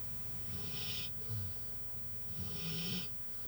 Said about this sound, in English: I was able to catch up with him in his truck in downtown Ukiah before he had to plow one of his fields. His dog, Jay, a big white lab, lay sleeping and snoring in the back seat.